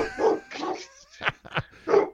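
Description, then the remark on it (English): A dog barks about five times in quick, uneven succession as someone walks by the house, fairly loud, with short pauses between the sharp yaps and no one talking. “No, he's barking because someone walks by the house.”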